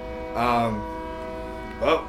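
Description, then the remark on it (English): A passing train's horn holds a long, steady blare through the whole moment, while a person's voice briefly cuts in over it twice. “You guys hear the train?”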